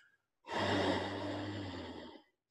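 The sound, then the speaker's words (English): One long, deep yogic breath drawn loudly during pranayama breathing practice in a yoga pose, with a throaty, rushing hiss and faint hum that holds steady for nearly two seconds before fading. No one speaks. “Asana, the physical pose right now, is the container for you breathing really big.”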